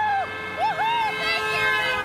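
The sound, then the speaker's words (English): Steady highway traffic hum on the Mass Pike in Massachusetts, with a sustained, blaring car horn holding its tone throughout. About 30 sign-waving Joe Biden campaigners call out over the noise from a cold, windy overpass on the eve of Super Tuesday. “30 or so campaigners had gathered on a cold and windy overpass of the Mass Pike on the eve of Super Tuesday.”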